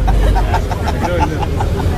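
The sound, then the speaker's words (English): Inside a moving, very hot bus: a steady, loud low rumble of engine and road noise fills the cabin without a break, with faint muffled sounds flickering above it. “It's about 50,000 degrees in this bus.”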